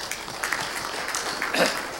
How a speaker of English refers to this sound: Let's give some applause to that.